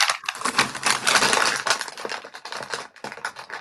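A bonbon wrapper crinkles and crackles steadily for a few seconds as someone eats bonbons, a dense run of sharp, papery rustles with a brief pause near the end, and no voices.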